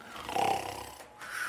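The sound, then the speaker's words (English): A man imitates loud snoring: a long, rasping, throaty snore, a brief pause, then another raspy breath begins. “Okay, I've snored pretty much as soon as I start.”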